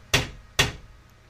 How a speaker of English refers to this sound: So he goes up to one of the brick walls of the house, and he just, with the chalk, like normal-ass chalk, draws a big rectangle, and then draws a circle on it, and then gestures to Scab, and then Scab walks over, and he knocks 3 times.